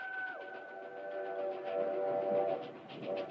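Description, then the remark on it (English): A locomotive rumbles on a railroad bridge while its horn sounds steady, layered tones that bend and shift, growing louder toward the middle before briefly dipping and swelling again, as in the bridge scene of the film Stand By Me. No voices are heard. “I think about that scene when they're on the bridge, they're running from the locomotive.”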